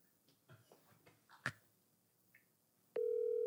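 A few soft taps and one sharp click, then an outgoing phone call to a woman who may be on an airplane starts ringing with a loud, steady electronic tone that holds through the end.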